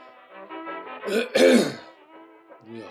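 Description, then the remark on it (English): A raspy, gravelly throat clearing: low humming grunts build into one loud, harsh hawking burst in the middle, then trail off into a short, quieter grunt at the end. No words are spoken. “Hopefully I'll hawk some Lubies during this.”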